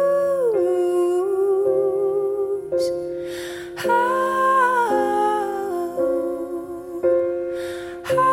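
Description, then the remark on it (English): A dog howls in long, wavering, pitch-sliding tones alongside a sung melody, the howls rising and falling loud over about eight seconds with brief breaks between phrases. “Pitchy dog.”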